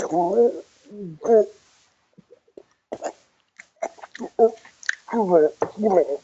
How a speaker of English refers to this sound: That sounds like a very thick... Sounds like a very thick jam. It actually sounds a bit like he's drowning in jam.